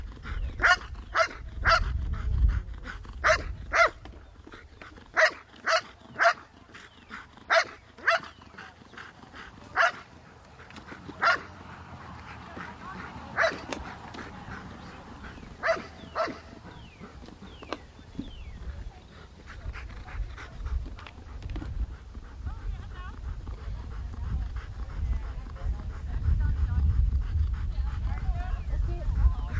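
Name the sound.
dog barking and growling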